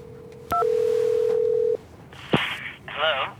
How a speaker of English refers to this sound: It's ringing. Put it on speaker.